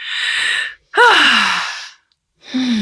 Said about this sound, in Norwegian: Egentlig tenker jeg at jeg må faktisk trekke pusten dypt. Ja.